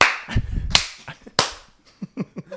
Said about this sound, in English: High five.